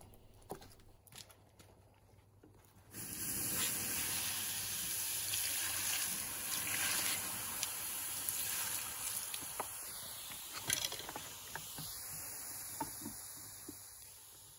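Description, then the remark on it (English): Water is poured onto hot rocks and bursts into a loud, steady sizzling hiss that lasts several seconds, peppered with sharp crackles and pops, with no talking. “I'm going to put some water on these rocks here”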